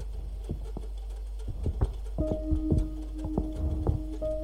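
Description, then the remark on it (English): Heavy, uneven thuds pound out in quick succession, like someone stomping hard across a floor, with a low steady hum and faint tonal ringing underneath. No voices are heard. “the feet followed me. The stomping felt more pointed, more violent, malicious.”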